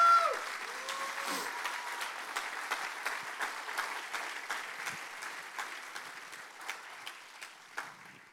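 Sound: loud audience applause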